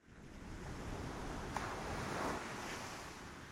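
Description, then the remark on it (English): Steady ocean surf washes and rushes while wind buffets the microphone during a kayaking trip on the ocean, a broad continuous roar with a brief sharp knock partway through and no voices. “Thanks for sharing your kayaking microdose of nature, Mom.”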